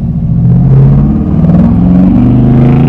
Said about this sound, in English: Whoa, big truck, early in the morning.